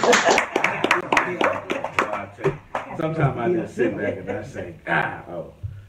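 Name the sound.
clapping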